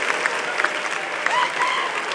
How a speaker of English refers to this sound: That's right. Clap your hands for all the Roman fathers. The correct ones.